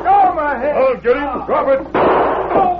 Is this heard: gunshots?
yes